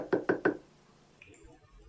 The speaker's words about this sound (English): Haynes knocked on the door.